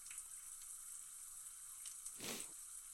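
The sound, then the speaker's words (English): A short splash of hazy IPA beer pours into a glass, a brief gurgling burst near the end over a steady fizzy hiss, fairly quiet, with no talking. “Let's pour a little bit out here to see what it looks like.”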